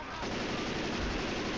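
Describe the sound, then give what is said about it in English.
Rapid, continuous video game gunfire rattles in a dense, loud burst, like automatic weapons firing nonstop with a gritty, crackling texture throughout. “What the fuck, you shot it.”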